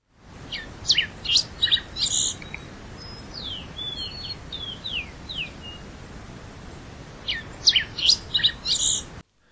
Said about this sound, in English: So we're going to play you now the song of the rufous-breasted warbling finch.